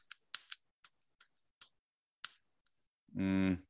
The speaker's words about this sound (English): It's like a typing, like clicking. Clicking.